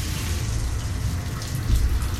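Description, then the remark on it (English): Shower water runs steadily, a dense continuous hiss and patter that holds at an even, fairly loud level throughout, with no voices. “Suddenly, with the water shut off, the only sound in the vast shower room was my panting breath.”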